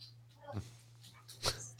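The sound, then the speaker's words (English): A dog named Lily, upset by a UPS delivery driver, barks twice, two short sharp yelps about a second apart, faint against a steady low electrical hum. “Sorry, UPS has upset my dog, Lily.”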